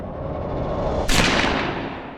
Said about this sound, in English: Hogue didn't miss his second shot.